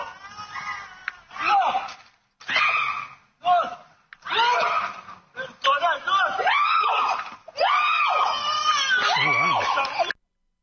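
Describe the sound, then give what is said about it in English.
A child screams and wails in a string of loud, high-pitched bursts separated by short gasping pauses, continuing for about ten seconds before cutting off. “I guess we're going to hear the mother screaming, though.”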